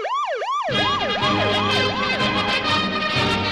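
A loud wailing siren sweeps up and down in quick repeated cycles, like an ambulance, at the start of a generic medical-themed music track; a rhythmic music bed with steady low beats kicks in under it after the first half-second.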